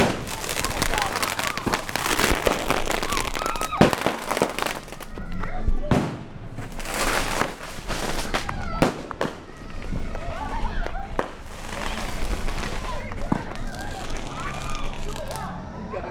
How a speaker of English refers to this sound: There was a great fireworks show until one of the fireworks got knocked over and everyone had to run for their lives because fireworks were launching everywhere.